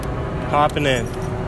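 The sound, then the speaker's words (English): Someone gets into a car: a quick jingle of keys and shuffling movement, with a brief vocal sound from a person mixed in over a steady low background rumble. “Let's get in this car.”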